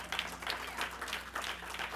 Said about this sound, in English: You see that right there? That's a sound! Clap your hands on ye people! Shout unto God with a voice of triumph! That's a sound!